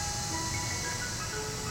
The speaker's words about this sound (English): Oh, look, there's an ice cream truck.